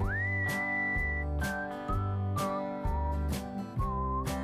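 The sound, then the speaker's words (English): A whistled ice cream truck tune, The Entertainer: a clear, high melody sliding between held and stepped notes over steady, bouncy chords that thump on a regular beat; no one speaks. “Have you ever noticed how when you hear the entertainer playing, you immediately remember what it was like chasing an ice cream truck as a kid?”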